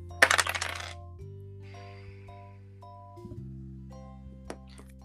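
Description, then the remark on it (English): Two eight-sided dice (2d8), rolled for a Holy Light spell's damage, rattle and clatter across a hard tabletop for about a second, a quick burst of sharp clicks that settles fast, over a soft sustained musical drone with one faint tap later. “And that is 2d8 if I can find the dice.”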